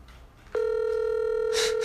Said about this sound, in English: Let's hopefully she answers, man. But if not, you know, we're just going to see where this goes. Right now, the phone is ringing.